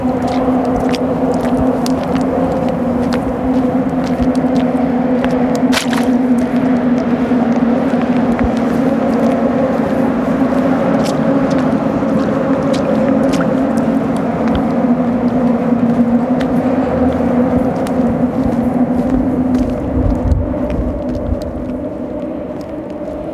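Outdoor ambience at a windy, wet pier surrounded by water in Gatineau, overlooking the Alexander Bridge, after overnight rain: a steady, droning hum of passing traffic with a low engine-like tone, under constant wind noise and scattered faint clicks, no voices.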